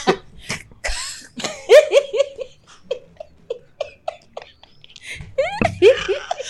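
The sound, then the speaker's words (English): Several sharp coughs burst out at the start, followed by a string of short, rhythmic voiced bursts like laughter, then another harsh cough near the end. “Cough there for me.”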